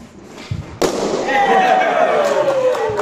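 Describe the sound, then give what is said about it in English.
A balloon is jumped on and bursts with one sharp, loud pop after a few soft thumps, followed by a steady wash of noise with a faint tone gliding slowly downward and voices in the background. “It's a balloon." But they said more than that. Can you try and jump on it?”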